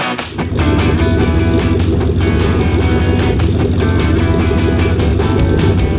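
A loud Porsche 928 V8 engine idles with a choppy, lumpy exhaust burble, its low pulsing rumble steady and continuous throughout, with no voices.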